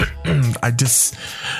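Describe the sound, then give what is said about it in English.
A person clears their throat because something is caught in it, a few rough, voiced grunts followed by a breathy, scraping rasp, with no words spoken. “I got something in my throat, y'all. Just forgive me real quick.”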